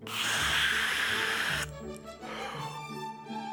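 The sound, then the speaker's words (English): Air hisses loudly and steadily as a three-story, rainbow-colored inflatable house is blown up like a balloon, for about a second and a half, then cuts off, leaving soft sustained musical tones. “It's an inflatable house. Briscoe blows it up just like a balloon.”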